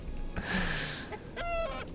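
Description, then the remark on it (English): Several chickens cluck and squawk in a short, busy burst of overlapping calls, with no talking. “Oh, that should have been a bunch of chickens.”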